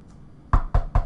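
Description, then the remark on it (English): Three firm knocks on a door in a quick, even sequence, fairly loud, after a brief quiet moment. No one speaks. “Yes, we knock.”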